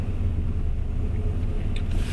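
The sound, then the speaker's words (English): A steady low engine and road rumble from inside a moving car as it parks on a street, with a brief crackling crunch of tyres rolling over ice near the end. “hope that was ice I ran over and I wasn't rubbing the car.”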